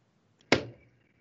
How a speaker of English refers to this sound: The crossbow bolt lodges into a branch.